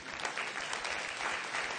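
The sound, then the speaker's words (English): A crowd claps steadily, a dense wash of many hands at once in sustained, fairly loud applause, with no voices standing out. “Yeah, that's an applause moment.”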